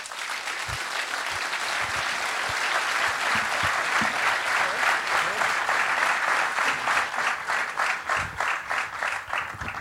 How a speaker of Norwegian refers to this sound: Gi en stor og stolt applaus til Egil Østenstad.